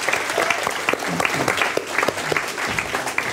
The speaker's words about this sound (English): Please give … a massive round of applause. …, everyone.